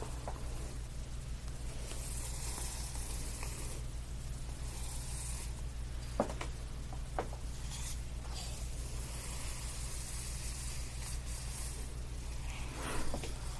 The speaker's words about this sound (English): I also like the sounds of brushing.